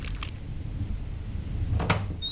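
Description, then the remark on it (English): The heavy wooden door of the Sawdust Tavern is shoved open at night as someone stumbles out, a low rumbling scrape building to one sharp knock near the end, with no voices. “Charlotte shoves open the tavern door and stumbles out into the night.”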